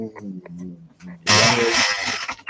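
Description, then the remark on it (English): A man speaks briefly, then an office chair lets out a loud, harsh creak, a buzzy, grinding groan lasting over a second that almost sounds like a small saw. “Sounded like a chainsaw. Need a little WD-40 on the chair, I think.”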